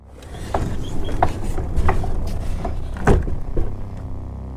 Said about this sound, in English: grabs the two handles of the big wooden doors in front of her and pulls them open.